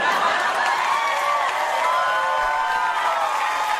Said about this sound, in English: Crowd goes wild. That's after a long setup to that punchline.